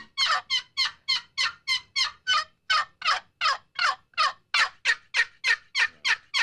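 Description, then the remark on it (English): A box call works out a fast, aggressive run of raspy turkey yelps, about twenty sharp, bright strokes in steady rhythm, loud and uninterrupted with no talking. “shows us on his box calls the call, he's very aggressive.”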